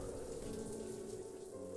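Steady rain falls with an icy wind in a continuous, even hiss with a soft low rumble beneath it, fairly quiet and unchanging throughout, with no voices.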